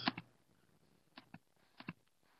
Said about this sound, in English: And then there are actually shortcut keys you can use for here. But you can see how I'm just typing this stuff in.